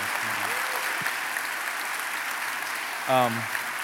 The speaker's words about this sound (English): Give this family a big round of applause here.